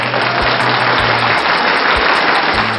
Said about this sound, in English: I might just stick in a little audio clip that I'll find on the internet of just random applause, just right there, just to give ourselves a pat on the back.